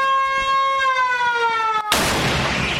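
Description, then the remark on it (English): A steady, harmonically rich warning siren wails for about two seconds, its pitch sagging slightly, then is abruptly cut off by a loud cannon blast that leaves a lingering roar. Bukowski sounds the siren to warn his neighbors before firing his cannon. “But as a concession to his neighbors, he now gives them this warning signal.”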